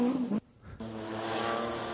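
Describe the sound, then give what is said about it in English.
A Nissan 240 RS Maxi rally car engine roars with a rich harmonic growl, cuts out abruptly for a brief gap, then resumes at a steady, buzzing pitch with no talking over it. “This is the 240 RS Maxi.”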